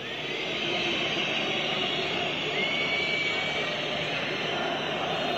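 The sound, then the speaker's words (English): A stadium crowd of Turkish fans at a soccer match in Turkey boos and whistles through a memorial moment of silence for 129 dead, a continuous, loud, dense roar with occasional shrill whistles cutting through the steady wall of jeering voices. “The moment of silence is these people booing and whistling at a memorial, a moment of silence before a soccer match for 129 dead innocents at the hands of Muslims.”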